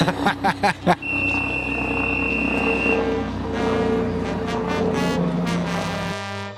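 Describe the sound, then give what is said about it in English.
A helicopter flying over a swim meet makes a steady, broad roar in the background, opening with a few quick rhythmic pulses, while a thin high-pitched tone sounds briefly over the rumble. “We got a helicopter flying over. That's that roar you hear in the background.”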